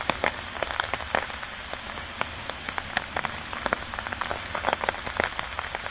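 Steady rain patters on a hard surface, with many sharp, irregular drops tapping over a continuous wash of falling water. No voices.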